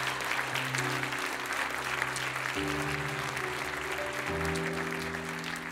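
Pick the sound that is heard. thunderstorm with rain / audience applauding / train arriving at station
audience applauding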